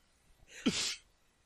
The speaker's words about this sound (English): See! Sneezing!